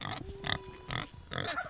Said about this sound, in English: A very eager pig on a 10-meter leash comes up to greet us.